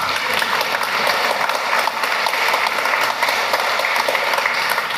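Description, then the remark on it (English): Steady, dense applause from a crowd at a live show fills the whole stretch, a continuous wash of many hands clapping at a fairly loud, even level with no pauses and no voices standing out. “Someone's got a great clap over there.”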